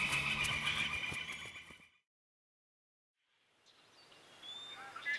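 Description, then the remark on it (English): Horses neigh loudly for about two seconds, a shrill whinnying burst, then silence, followed by quieter outdoor ambience with faint bird chirps; the horses are just through the trees. “The horses are right through the trees there.”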